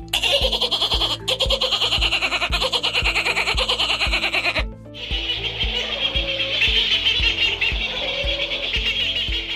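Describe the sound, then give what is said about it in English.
A person imitates a cackling seabird, a long, loud run of rapid, harsh, bleating cackles that hardly pauses, shifting briefly to a rougher, hoarser tone partway through. “So my seabird sounds like a cackling nightmare.”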